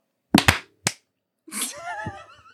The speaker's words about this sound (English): I thought I did a good manly clap. I don't understand.